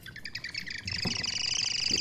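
A bird-shaped pouring gauge chirps and warbles as water is poured from a bottle into a cup, a steady burbling whistle that grows louder and denser partway through, with no one talking.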